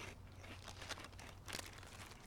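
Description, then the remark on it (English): Crisp potato chips with the skin left on being crunched while eating, with a couple of sharper crunches standing out among softer crinkly chewing over a low steady hum, fairly quiet. “Right, these nice crisp potatoes, you can see that they've left the skin on this.”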